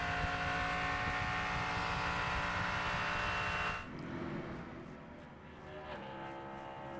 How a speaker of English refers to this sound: Cadillac engine on the banking, going to full revs.